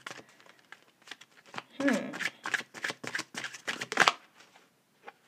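A deck of tarot cards being shuffled, with a quick series of crisp riffling snaps and soft slaps that bunch together, peak, then trail off into a few light taps.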